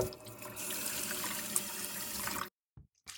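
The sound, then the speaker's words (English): A bathroom tap runs steadily with a broad, rushing hiss of water for a couple of seconds as a boy splashes water into his face, then shuts off abruptly, leaving near silence with a couple of faint drips or clicks. “He went straight into the bathroom from his room and splashed water into his face.”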